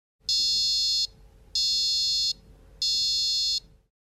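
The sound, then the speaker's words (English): A beacon's charging start tone as it is plugged in and begins charging: three loud, high-pitched electronic beeps, each lasting just under a second, evenly spaced with short pauses. Nobody speaks. “When you plug in the beacon, it begins charging and you'll hear this sound.”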